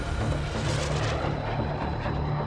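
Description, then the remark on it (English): A jet airplane flies overhead, its engines producing a steady, loud roar with a low droning hum underneath. The sound stays constant throughout, with no voices. “And so he got on a jet and left the States forever.”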